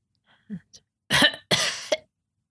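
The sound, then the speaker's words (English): A person lets out two harsh, raspy hacking coughs in quick succession, fairly loud, with a small catch of breath before them and no talking. “A hacking cough.”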